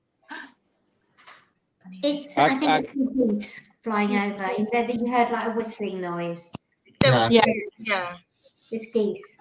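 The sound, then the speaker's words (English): Geese flying overhead, giving a run of loud, harmonic honking calls in irregular bursts, with short quiet gaps between groups of calls. “I think it's flying over. You heard like a whistling noise. There was geese.”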